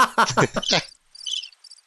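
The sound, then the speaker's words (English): A short, bright burst of cricket chirps, a sound effect played from a soundboard, trills in quick, buzzy pulses, following a brief harmonic, voice-like sound at the start. “Where's the crickets? There's one in here somewhere. There they are.”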